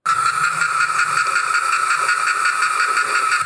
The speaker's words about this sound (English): You say cicada, I say cicada, and Dr. Floyd Shockley says, cover your ears, because it's going to be loud.